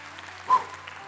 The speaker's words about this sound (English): Now's the time you can clap and holler and celebrate and give God some glory in the house and online today.